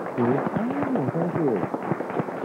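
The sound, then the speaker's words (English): A simulated studio audience claps in a dense, steady crackle throughout as Mark Hamill is brought out on QVC, while a person speaks over the applause. “They bring out Mark Hamill, and I think they like simulate that there's a studio audience when I don't think there really is. Yeah, the clapping.”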